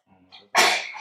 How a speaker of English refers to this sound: Bless you.